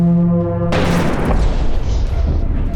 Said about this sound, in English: The ship quakes as a warhead is punched from its cannon at light speed. With the force of several plasma bombs, it detonates in the face of the Xenos cruiser.